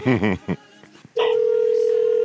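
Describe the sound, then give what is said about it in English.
A brief voice is heard at the start, then a steady, loud electronic telephone tone sounds on the line, like a call ringing, holding unbroken until the end. “Why is she not picking up for Granny?”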